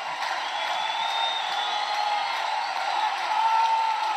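A gym crowd cheers and applauds steadily as the team's seniors are recognized, a dense wash of clapping and shouting with a few high whoops rising above it, loud and sustained throughout.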